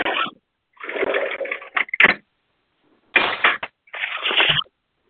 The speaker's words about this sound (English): Who is washing dishes, dog? Yeah, I'm here. Somebody is washing dishes, dog.